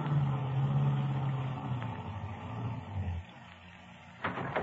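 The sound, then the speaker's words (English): A car engine hums and slows with a dropping drone as the car pulls up behind another car ahead on the left, then cuts to near quiet as it stops, followed by a brief clunk or rattle at the end. “Pull up behind that car just ahead on the left.”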